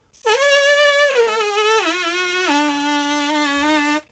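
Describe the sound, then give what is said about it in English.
A loud, continuous lip buzz lasting a few seconds, stepping down in pitch in three or four distinct drops, bright and raspy, made by a trumpet player buzzing their lips without the instrument. “speaking of which, actually, here's, and let me show off my buzz.”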